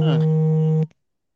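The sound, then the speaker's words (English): A phone rings with a single steady electronic tone, loud, holding for under a second before cutting off abruptly into silence. “somebody's phone is ringing.”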